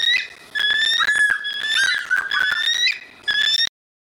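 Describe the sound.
On the Power Trip Morning Show, someone imitates the call of a bald eagle, the national symbol: a loud, shrill, whistle-like cry in several wavering, sliding notes with short breaks, heard alone and stopping abruptly.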